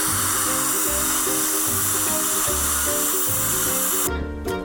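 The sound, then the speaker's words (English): A steady, high-pitched dental drill whines continuously over a loud hissing water spray as it is used in a patient's mouth at Enamored Dentistry in North Scottsdale. Its pitch shifts slightly, the sound is loud with no talking, and it cuts off abruptly near the end. “I wanted to clear the air and get that all straightened out before you put drills and sharp objects in my mouth.”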